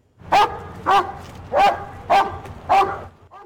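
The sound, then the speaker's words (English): A large police dog barks five times in a steady, evenly spaced rhythm, loud, each bark sharp and full with no talking in between, outside the Townline Veterinary Hospital in Abbotsford in the Fraser Valley during a Chips for Charity dog microchipping event. “There's a police dog making himself heard outside the Townline Veterinary Hospital in Abbotsford, where staff hosted their first ever Chips for Charity event.”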